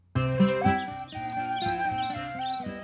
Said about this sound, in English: It's with the birds and everything, man.